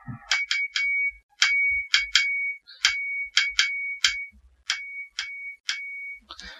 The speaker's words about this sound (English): Here we go. I think that was correct Morse code. It's been that long since I've actually sent my own call sign, but there you go.